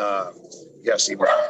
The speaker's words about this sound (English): My dogs are living the cliche. I think they're going to bark at the mailman here.